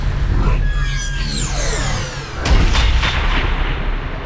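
A cannon fires with a heavy, booming blast over a constant low rumble, preceded by descending whistling sweeps, loud with no talking.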